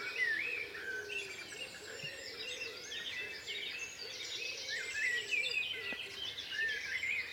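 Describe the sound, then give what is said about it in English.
A blackbird sings in fluttering, whistled phrases over a busy outdoor chorus of other birds on a morning in the hills of West Dorset, England, heard from just beneath the bird about 50 yards from a garden, steady for several seconds, with no voices. “And I'm just hoping he sings happy birthday, this blackbird.”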